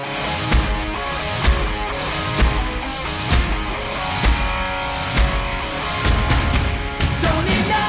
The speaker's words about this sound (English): So to me, this sounds like a reversed snare drum hit, or maybe just a reversed snare reverb.